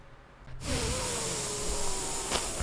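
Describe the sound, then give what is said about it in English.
A person blows their nose into a microphone: a sudden, hissing blow lasting about two seconds, breathy and loud, with a faint whistling tone running through it before it stops with a small click. “I just nose farted into the microphone.”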